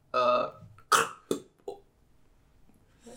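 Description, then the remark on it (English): A voice mimics a car door slamming as an improvised ad-lib, with a drawn-out throaty vocal burst, then several short sharp percussive mouth pops, loud against near silence, ending with a faint breathy sound. “A car door slamming.”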